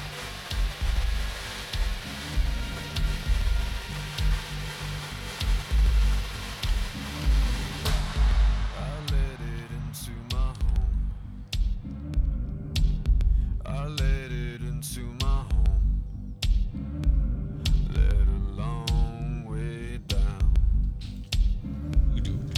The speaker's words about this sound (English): It's those like the droney noises I love a lot. The drone.